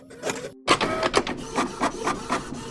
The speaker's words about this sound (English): some of the city's printers suddenly sprung to life. Shooting out messages as if they had a mind of their own.